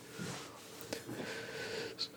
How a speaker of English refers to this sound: Apologies, I had to sneeze even though I'm not anywhere near your cats.